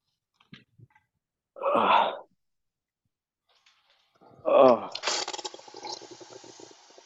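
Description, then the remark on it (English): A faucet runs, filling a water bottle: a short splashy burst first, then after a pause a steady, hissing gush of water that keeps flowing to the end. “You can hear the faucet.”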